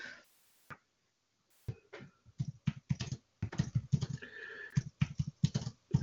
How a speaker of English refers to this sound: I'm typing something to Charlene via internet